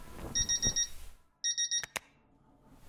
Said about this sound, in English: The alarm continues with its annoying tune, and Ellie reaches over impatiently and switches it off.